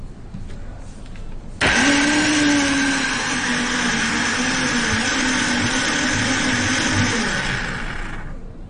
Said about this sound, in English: Yeah, here in Hong Kong I'm using blender, but back in my country, I need to use my power to do it. So you'd have a physical thing to pound it with. Yeah, very physical to do it. But here in Hong Kong, we don't have it. We always use blender.